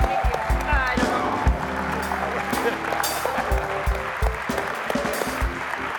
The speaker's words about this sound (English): And she is amazing. So I think we ought to stand to our feet and just give her one more hand clap for how awesome she has been.